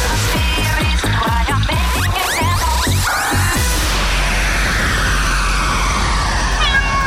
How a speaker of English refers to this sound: Have you lost your cat? Uh-oh. Steady, kitty.